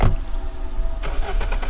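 A car engine turns over and hums with a low, steady drone, then a burst of brighter mechanical noise partway through as the vehicle starts to drive off. It is fairly loud, with no voices.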